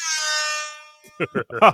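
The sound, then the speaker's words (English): A loud, sustained air horn blast from an air horn app rings out for most of a second with a bright, harmonic-rich tone, then fades as a man's voice starts talking in short bursts. “I got air horn apps.”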